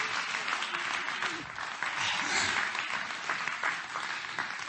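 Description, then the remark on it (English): An audience claps their hands together in praise to God, sustained, dense applause, a steady wash of many overlapping claps with no pauses, at moderate loudness. “Come on, clap your hands to him and give him praise.”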